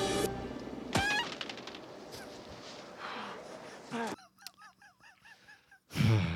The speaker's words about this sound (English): Why is there a chicken noise? For a pigeon? I don't know. I mean, to be fair, none of us have ever kicked a pigeon, so we don't know.